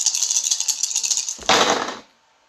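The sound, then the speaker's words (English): Dice rattle briskly in a cupped hand for over a second as a haunt roll in a board game, then clatter loudly onto a hard tabletop and quickly settle. Clear, with no voices. “Make a haunt roll now. Are you just going to use those dice?”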